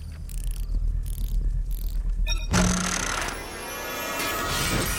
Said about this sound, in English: He bought some sort of capsule, got a free, not free, you pay 30,000 of these coins and you get a capsule. I'll do that real quick so you can hear it.